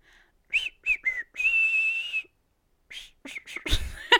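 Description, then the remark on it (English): A person tries to whistle John Cena's theme song: a few quick notes, one long steady held tone, then a pause and a burst of breathy, faltering notes. “I was trying to whistle his theme song.”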